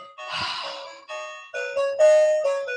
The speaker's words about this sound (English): Now, dear listeners, you can finally enjoy the doorbell.